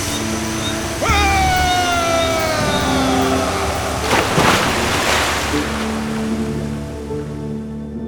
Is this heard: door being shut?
no